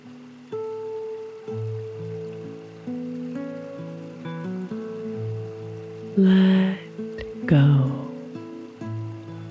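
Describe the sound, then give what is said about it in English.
Soft, sustained musical tones play throughout while two loud, brief bursts of bubbling, swirling water flowing over smooth rocks, around bubbles and past swirling pools surge up near the end, standing out clearly above the music. “Over the smooth rocks, around the refreshing bubbles, and past the swirling pools.”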